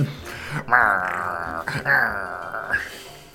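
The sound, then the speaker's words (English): A person imitates an old greyhound's growl, making two drawn-out, raspy snarls, each lasting about a second with a short break between them. “I think he doesn't really trust anybody of noble blood either, so I'm sure he's letting out a little bit of a growl.”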